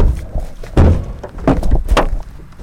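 A few heavy, hollow knocks on a wooden door, spaced unevenly and fairly close, with a dull thud to each rap and no voices.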